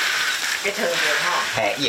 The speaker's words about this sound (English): The tea master's hands move constantly, the huge pan ringing as the tea leaves dry.